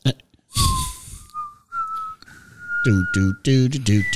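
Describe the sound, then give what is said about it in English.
A person whistles a short, wavering tune close to the microphone, the pitch stepping up across a few sustained notes, and then a voice starts talking over the end of it. “Can whistling into a microphone be a good thing?”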